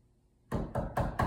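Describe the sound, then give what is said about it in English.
Four firm knocks on a door in a quick, steady rhythm, fairly loud after a moment of near silence. “Wait, someone's at the door.”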